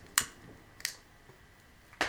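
Three sharp, crisp clicks from a lighter, spaced irregularly over a couple of seconds, with a quiet background and no talking.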